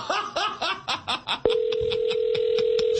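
Several quick, rhythmic bursts of laughter give way to a loud, steady telephone tone that drones on unbroken as a call to a man's wife's phone goes unanswered.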